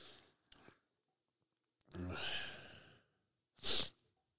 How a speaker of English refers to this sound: Made me sneeze.